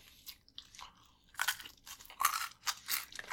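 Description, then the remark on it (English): Crisp crunching of a bite into a dry buffalo chicken wing, followed by several loud, bursty chews in an uneven rhythm, with no talking. “Ooh, I have a crunchy.”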